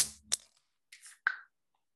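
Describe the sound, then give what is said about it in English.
A can of Granville Island beer with orange on its label cracks open: a sharp metallic click and snap, then a brief fizzing hiss and another crisp pop with fizz, with no talking. “Let's crack this sucker open. Crack it open.”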